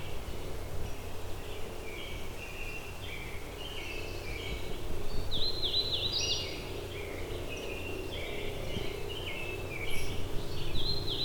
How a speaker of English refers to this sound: It's an American robin here. I just saw it fly across. It got much closer, so I'm gonna see if I can get eyes on this bird.